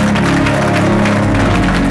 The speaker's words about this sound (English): Now, one big clap offering for God and for the power of the Holy Ghost.